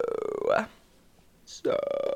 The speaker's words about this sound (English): If you hear her burping, no, it's the gum. And it's coming back up.